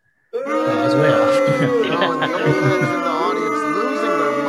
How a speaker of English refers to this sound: They're booing the shit out of you guys. Oh man. Don't take it personally.